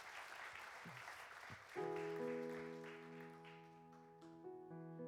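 An audience applauds with steady, crowded clapping that gradually thins, while sustained piano chords come in partway through and ring on beneath it.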